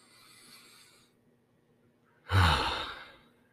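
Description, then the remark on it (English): A soft inhale followed by a long, deep exhale that swells loudly and trails off, a slow breath drawn deep into the belly, with no talking. “It really is incredible what just a few deep breaths can really do.”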